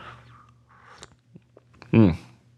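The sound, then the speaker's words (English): Quiet mouth sounds: a few small wet clicks, then a short louder slurp of someone sipping a drink near the end, with a faint low hum underneath. “There's the proper inaugural sip.”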